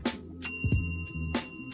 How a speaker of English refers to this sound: Yo, did y'all hear my bell? I didn't ask y'all this whole time if y'all heard my bell for the show.